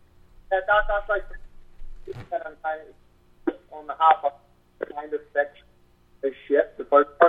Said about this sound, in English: Wait, hold up. Is your hand covering like a part of a phone or your microphone or anything like that? About now, can you hear me now? Yeah, that's better